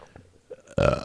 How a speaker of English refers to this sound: Oh, that was a really detailed burp, dude. That was a really good one. I apologize if that offended anyone.